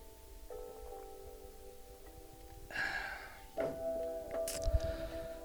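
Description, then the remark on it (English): A quiet sip of water: a couple of soft, wet slurping bursts and a short sharp knock, set against a faint steady hum, with no one talking. “But I'm going to take a little sip of water there now.”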